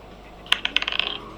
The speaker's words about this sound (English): Oh, she rolled over a 20. She rolled a 17 on the dice. Yeah. Okay, that's a hit.